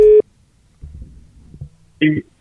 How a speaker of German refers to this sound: Und da ist jetzt das Telefon